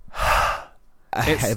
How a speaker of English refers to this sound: Actually, before anything else happens, you just hear what kind of sounds like heavy breathing.